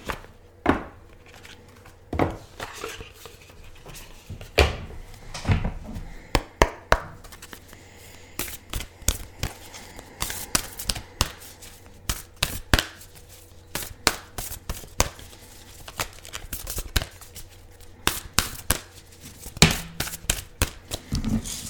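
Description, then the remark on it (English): A deck of oracle cards is shuffled: crisp slaps, flicks and papery riffles arrive in irregular bursts over a quiet background, with no one talking. “So let's open it up, shuffle, and see what comes up for us.”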